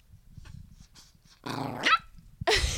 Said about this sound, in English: And now he's growling at Carlin.